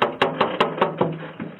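Steady, firm knocking on an apartment door by two Burlington Police officers, about eight evenly spaced raps that fade slightly toward the end, with no voices.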